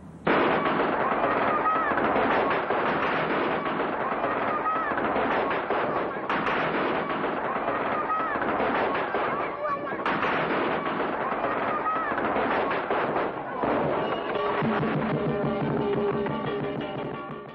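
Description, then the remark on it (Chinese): A dense, continuous barrage of crackling pops and sharper bangs, like strings of firecrackers and fireworks going off, loud throughout, with a few tonal voice-like sounds near the end. “大家有冇见过喺大时大节有人放烟花同埋放炮仗呢？”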